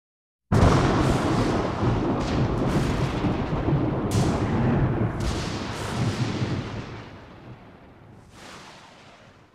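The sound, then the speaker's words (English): A loud rumble of thunder rolls in suddenly and keeps booming with several sharp cracks, then slowly fades into a low grumble near the end, during a storm with lightning and torrential rain over an old church. “Lightning raged, throwing stark shadows against the old church's stained glass windows.”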